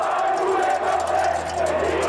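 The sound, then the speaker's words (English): A large angry crowd in Italy shouts and jeers at politician Bettino Craxi while hurling coins at his car, in a continuous dense roar, many voices overlapping loudly, with no pause across the whole stretch. “The crowd shouts, "Bettino, you want this money too?" as they hurl coins at his car.”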